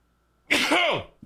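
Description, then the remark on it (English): A single loud, sudden sneeze bursts out, a sharp breathy blast with a voiced falling tail lasting about half a second, followed by a faint short exhale. “hang on, I got to sneeze.”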